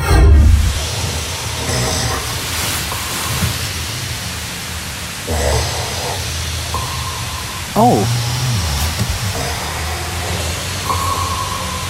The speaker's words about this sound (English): Have a listen to this. Some guy's snore sounds like an echolocator or sonar from a submarine.